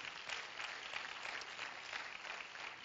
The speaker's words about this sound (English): Amen. Let's clap our hands to the Lord right now.